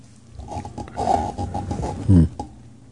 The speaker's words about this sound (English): This whole fucking room could use some fucking oil. You know what? This whole room squeaks and moves. Yeah, these mics, look at that. Hear that?